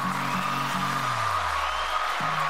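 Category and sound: crowd, applause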